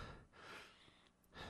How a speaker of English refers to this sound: He's moving. He's still alive? No! Oh, God. One of the guards just kicked him again. He's breathing, but shallow and short.